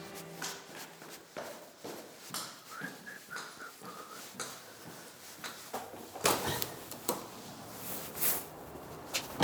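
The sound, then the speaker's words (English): Amanda Byram steps out of her front door in Hove on the south coast of England in April 2021: the door opens and shuts with clicks and clunks amid shuffling footsteps and movement, then a sharper burst of rustling and bumps toward the end. No one speaks. “Right now though, for our very first episode, we're about to join Amanda Byram, presenter, model, and even our very own columnist for Health and Wellbeing, as she steps out of her front door in Hove on the south coast of England in April 2021.”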